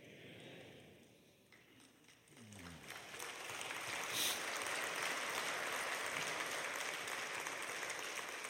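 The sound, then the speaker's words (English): A crowd breaks into applause, scattered claps at first swelling after a few seconds into steady, dense clapping that holds loud to the end. “You're not going to lift your hands, but you'll clap.”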